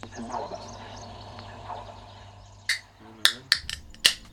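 A beer can being popped open: a series of sharp, bright clicks and snaps, four or five in quick succession, over a low background hum with murmuring voices early on.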